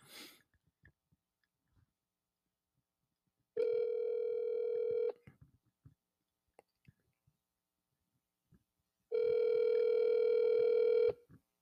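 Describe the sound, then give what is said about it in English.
Two long ringback tones sound as a phone call is placed on speakerphone, each lasting about a second and a half with a pause between, steady and fairly loud, with faint handling noises and breathing in the gaps. “Look, what we're going to call him one more time. Put it in the speaker.”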